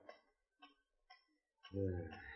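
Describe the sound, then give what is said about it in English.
A clock in the living room of the Porter home ticks three times at a slow, steady pace, each tick crisp, before a man's voice starts talking over the last of it. “Yeah, that blankety-blank clock gives me the willies.”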